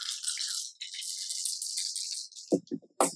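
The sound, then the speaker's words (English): Dice rolled for fire damage during a tabletop role-playing game rattle steadily in a cupped hand or cup for about two seconds, then clatter out with a few sharp, bouncing clacks as they land and settle. No one speaks. “Do you need more dice? Nope, I got exactly enough.”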